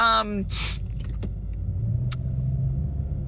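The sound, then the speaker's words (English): Steady low road rumble fills a car cabin while driving, with a brief voice at the start, a short breathy whoosh, and a couple of faint clicks and a sharp tick over the drone. “this is a car cast. For those of you who are not on the Patreon, once in a while we do these nice little car casts. I'm, you know, driving now”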